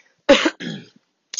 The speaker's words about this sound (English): Now I'm coughing. I don't I'm not sick. I'm fine.